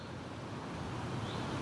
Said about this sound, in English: It's a wet and slightly windy morning on the outskirts of Bristol. We're about, I don't know, maybe 20 minute walk from our house. Oh, the rain's just coming down a little harder. In a patch of woodland called Crew's Hole.